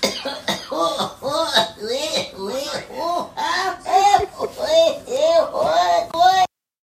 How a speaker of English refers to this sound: What's funny is I'm holding in coughing right now because I drank that beer like a little too quick